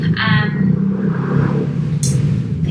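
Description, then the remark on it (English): A motorbike passing by outside drones loudly and steadily, its low, rough rumble holding a buzzing pitch throughout, with a brief hiss of higher noise near the end. “There it goes. A motorbike.”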